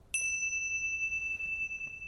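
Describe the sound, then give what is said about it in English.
A single meditation bell is struck once to begin a meditation, its bright metallic tone ringing out clearly and sustaining with a long, steady resonance that slowly fades. “I'll begin and end the meditation with a bell.”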